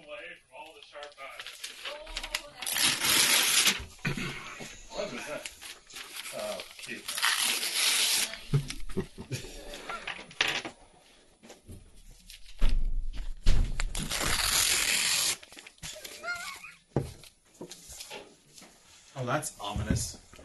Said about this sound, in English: All right. Going to tear up some paper for notes.